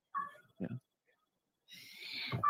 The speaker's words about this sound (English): I've got a howling kitty now.